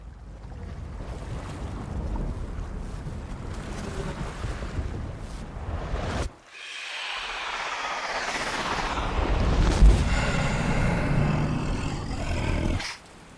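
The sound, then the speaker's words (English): A storm at sea: a loud, steady roar of wind, rain and churning water. There is a brief lull midway, then whistling, rising gusts over the surging waves. No voices. “This is an unholy storm. I can hear and feel the evil within it.”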